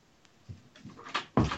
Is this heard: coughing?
no